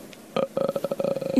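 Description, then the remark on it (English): A voice imitates a creepy ghostly croak like The Grudge: a short throaty burst, then a steady, rapid rattling series of guttural clicks for about a second, fairly loud, with no talking. “Now you sound like The Grudge.”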